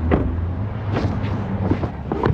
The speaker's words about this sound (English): When we show up, it's pouring rain.